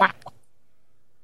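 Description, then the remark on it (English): A person briefly imitates a complaining chicken squawking, making two quick, harsh, nasal cries, the second softer, followed by silence. “The one chicken's walking around back just fucking bitching up a storm.”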